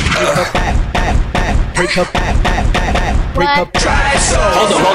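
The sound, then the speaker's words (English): Loud gunshot effects crack out in a rapid series of sharp, booming bursts, layered over a dense, noisy wash of sound with what may be shouting. “you forgot the gunshot, dickhead.”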